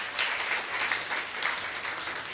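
A crowd applauds, a dense, steady wash of many hands clapping at once, fairly loud and sustained for a couple of seconds with no one speaking over it.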